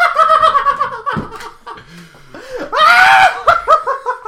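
A person yells into a drawer, loud close-up vocal bursts with a slightly muffled, boxed-in tone, rising to a strained peak midway, with laughter-like whoops around it.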